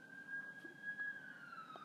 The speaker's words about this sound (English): Hi, sirens.